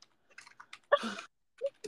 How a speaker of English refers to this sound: Okay, I'm typing it out.